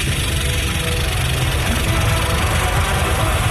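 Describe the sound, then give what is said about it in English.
A voice imitates a snake's rattle with a steady, buzzy, rapid rattling hiss that holds at an even, fairly loud level for several seconds, with no words spoken. “Sounds like a 45-foot snake just rattling for like an hour as it walks past you.”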